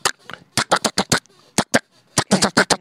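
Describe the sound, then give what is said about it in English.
A voice mimics M16 rifle fire with rapid, staccato mouth bursts, loud, delivered in two quick volleys separated by a brief pause. “Can you do an M16? Well, M16 is a little bit more staccato, so it's.”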